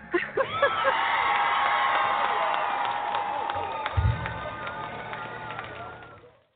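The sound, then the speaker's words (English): A crowd applauds steadily for several seconds as the host of a beauty show is introduced, broadcasting from the Bridal Studio and Spa in Sandwich, Cape Cod. Dense clapping is mixed with whoops and cheers, loud, then tapers off at the end. “I love the applause.”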